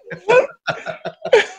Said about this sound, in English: I just coughed and farted at the same time.